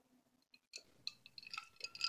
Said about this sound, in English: I'm gonna drink some water here.